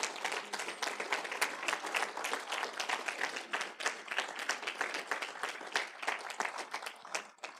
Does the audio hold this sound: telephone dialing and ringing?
no